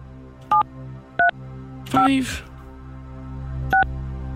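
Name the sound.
telephone keypad dialing tones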